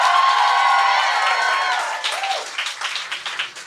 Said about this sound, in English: So give it up for … one more time.